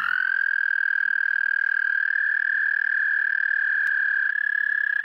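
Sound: frog calls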